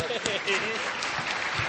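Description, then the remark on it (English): A crowd applauds steadily, dense overlapping claps throughout, with a few faint voices mixed into the noise near the start. “Let's give that a round of applause.”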